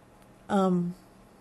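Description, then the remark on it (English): A single loud meow from a male house cat that wants to play, drawn out for about half a second with a pitch that slides downward. “My cat is crazy right now.”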